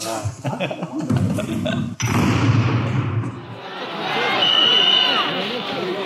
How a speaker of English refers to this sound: And with that whistle, the first pulls of the 2020 World Championship begin.